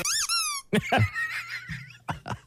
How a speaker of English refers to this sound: If you don't slap it hard enough, though, it makes, like, different sounds. Yeah, like here's me going soft.